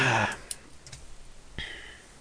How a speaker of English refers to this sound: Let me get a pen and paper out.